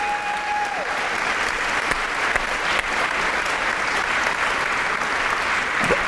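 A crowd applauds the man who headed up all of sales at GoPro, a steady, dense, even wash of clapping for about six seconds that stays loud throughout without building or fading.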